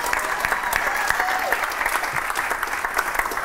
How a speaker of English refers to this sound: All right, can I get a round of applause? Yes.